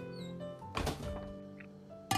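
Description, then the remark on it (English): A kitchen drawer rattles open and a suitably sized pot is lifted out with a brief clatter, to cook Korean ramen, then a second sharp knock near the end, over a faint steady tonal background. “Bring a suitable size pot from another drawer.”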